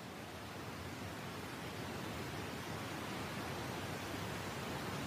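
pink noise

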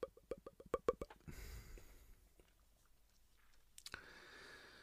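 sipping a drink

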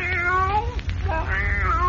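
cat meowing

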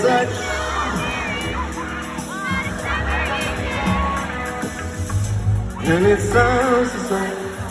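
concert crowd cheering

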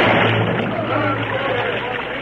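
water bubbling

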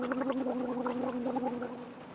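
gargling water

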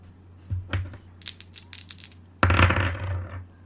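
dice being rolled

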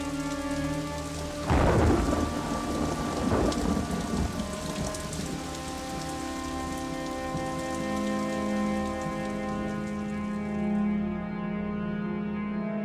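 rain falling with thunder

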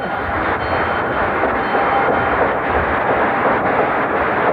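old school bell ringing

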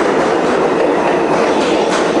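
train running on rails

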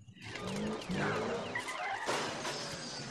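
car speeding past

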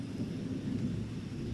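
thunder rumbling

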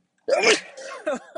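sneeze

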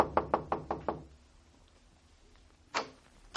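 knocking on a door

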